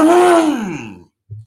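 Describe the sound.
A voice imitates a car engine revving with a loud, buzzy noise, its pitch swelling upward and then sliding down over about a second, followed by a brief low grunt after a short pause.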